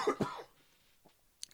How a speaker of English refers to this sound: excuse me, I have to cough for a sec.